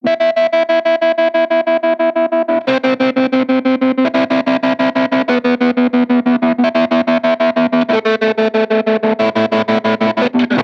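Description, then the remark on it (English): Electric guitar chords pulse with a steady, fast tremolo from a Strymon Flint pedal, the volume throbbing rhythmically as the chords change every few seconds; slightly driven tone, no voices. “That tremolo is coming off the Strymon Flint.”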